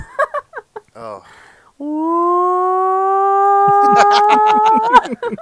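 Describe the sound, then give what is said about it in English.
A voice mimics a hand-cranked klaxon siren, holding a steady, slowly rising wail for about three seconds, while another person starts talking over its final stretch after some brief chatter before. “A klaxon.”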